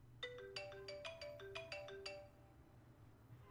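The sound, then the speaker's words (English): A classic phone ringtone plays a quick melodic run of about ten bright, chiming electronic notes, then stops, leaving a low steady hum in the background. “That's a pretty classic one. That's the ringing one, but what is the old one?”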